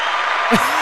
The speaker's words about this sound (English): The applause makes you feel good about yourself.